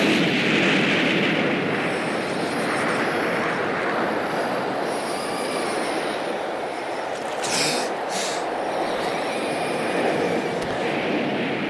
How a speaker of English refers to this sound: So we'll hear the sound of the dam exploding, and then you'll hear the sound of the ants we've been talking about this whole episode drowning in the water.